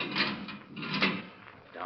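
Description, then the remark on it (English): A heavy steel door grinds and scrapes open in two drawn-out surges, a rough metallic creak at moderate level with no one speaking. “I kept a check on the time, and it was 20 minutes before they were due to arrive at the Marquardt building when a sound stopped me. The steel door was being opened.”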